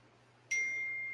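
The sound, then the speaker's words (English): A single computer notification beep: a clear, steady high electronic tone starts abruptly and holds, fading only slightly, over a faint low hum with no one talking. “Why is your phone making noise? Okay, you know what? I think it's my computer”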